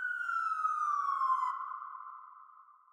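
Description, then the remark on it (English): An ambulance siren wails loudly as paramedics rush a patient to the hospital, its tone sliding slowly downward before holding steady and fading away over a few seconds, with no voices. “Next thing you know, I'm inside an ambulance.”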